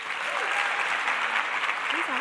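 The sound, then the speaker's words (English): Steady, dense applause from an audience at a writers' festival welcoming a performer to the stage, a loud continuous wash of many hands clapping, with faint voices and a few whoops rising briefly through it. “So please join me and let's get our clapping into formation to welcome to the stage”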